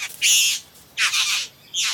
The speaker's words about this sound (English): And what a cool sound. There must be a female bowerbird here somewhere, and he's trying to get her to come closer with his magnificent song and dance.